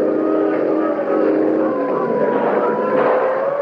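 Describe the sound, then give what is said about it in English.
A police boat's loud, steady motor drones with a harmonic whine as it approaches fast, its pitch shifting slightly as it races along without any voices. “Police boat coming fast.”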